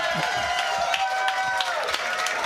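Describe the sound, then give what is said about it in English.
A live crowd at Permane Brothers applauding the introduction of Penn State Nittany Lions head football coach James Franklin, a dense wash of clapping and cheering that stays at an even, fairly loud level throughout, with scattered sharper claps poking through. “Another great crowd at Permane Brothers.”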